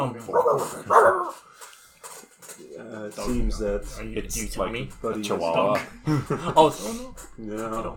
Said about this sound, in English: You hear a dog barking.